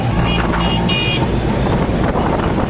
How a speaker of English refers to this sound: So I'm in a rickshaw right now. I just bargained to get from Center City, Karachi, to my house